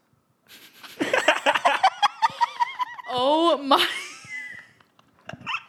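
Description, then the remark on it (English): Someone imitates a fart with their mouth, a short buzzy, wobbling blurt, surrounded by bursts of giggling laughter and a brief exclamation. “I can do a good fart noise if you want.”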